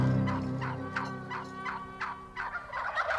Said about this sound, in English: about one of the wariest creatures in the woods. That's the North American wild turkey.